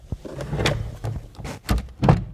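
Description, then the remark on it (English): The door of a closet used for recording opens or closes, with a few wooden thumps and rattling scrapes over a couple of seconds and no one speaking. “That's the door to the closet where, for the past however many months, I've been recording.”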